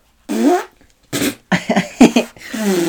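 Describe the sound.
A series of loud, buzzy fart noises made by pressing a hand against the bicep, several sputtering bursts in quick succession with brief gaps between them.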